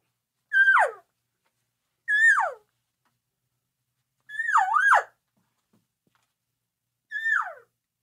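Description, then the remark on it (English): Four whiny, descending cow elk mews blown on a game call while walking in and moving along, each about half a second with pauses between, the third longer and wavering. No one speaks. “We're just walking in, we're moving along, and we're just a couple of elk talking to each other.”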